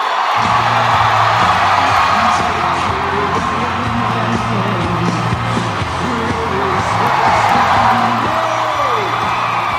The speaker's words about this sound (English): Inside, however, it was like a rock concert. Everybody happy to be crammed inside a box-like auditorium, 3,000 to 4,000 people shoulder to shoulder. The crowd was explosive.